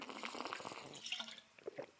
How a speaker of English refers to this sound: She laughs at me because I carry this daggum water bottle with me everywhere. So she recognizes that sound.